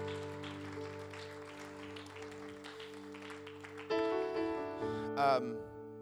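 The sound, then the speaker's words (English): An audience claps steadily over a sustained organ chord at a church service on a baptism day; after a few seconds the applause thins out as louder held keyboard notes take over. “Let's give them all another good round of applause.”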